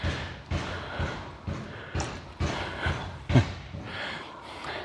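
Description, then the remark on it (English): Steady hammering next door, a man pounding out a dent in a garage: about ten dull, heavy blows struck in a regular rhythm roughly twice a second, with some ring and reverberation. “So I think that's him hammering out the dent in the garage.”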